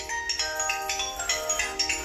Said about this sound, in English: Let's see. Oh, somebody is calling. Fuck it. I dropped the phone on the floor, and I can't get it. Because I'm in my wheelchair.